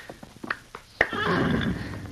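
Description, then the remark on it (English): A few sharp, evenly spaced thuds lead into a loud, drawn-out horse whinny in a desert that rings on for over a second, with no talking over it. “Sorry for the horses. Maybe they can make their way to water.”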